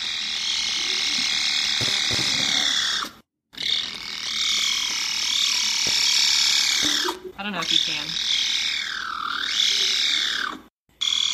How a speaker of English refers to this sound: But it's basically a little caracal kitten going.